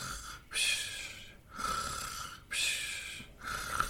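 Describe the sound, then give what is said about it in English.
A person imitates snoring, making a steady run of rasping, breathy snores and exhales, roughly one per second, with no talking. “Can you snore? Let's hear your sound.”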